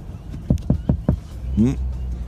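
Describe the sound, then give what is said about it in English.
A police officer raps on a car window, four sharp, evenly spaced, fairly loud raps, followed by a brief voiced sound over a low background rumble. “His officer continues to rap, tap, tap on that window.”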